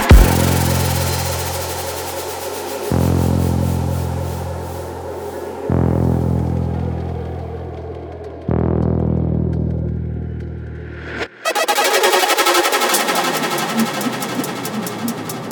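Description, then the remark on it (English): A loud car engine revs hard and climbs through several gear changes, each shift dropping the pitch before it rises again, ending in a rushing roar as the car passes, during the Summer Nats car event in Canberra, Australia, where drivers do burnouts on the main street. “Oh, did you guys hear that car go past?”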